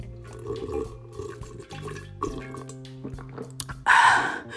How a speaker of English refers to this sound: Okay, hold on. Let me sip on some more of this tea.